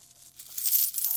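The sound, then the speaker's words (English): Coins taken from a young man's pocket jingle and clink together as he shakes them in his hand at a judge's request in court, a bright metallic rattle that swells over about a second, moderately loud with no talking. “"Well, get them out." And so he reached in his pocket and he pulled them out. And the judge said, "Shake them now, shake them."”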